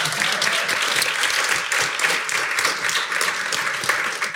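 A crowd applauds steadily for several seconds, many hands clapping at once in a dense, sustained wash of sound with no one speaking over it.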